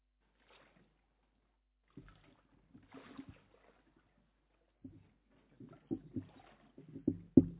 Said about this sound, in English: Follow me down into the water.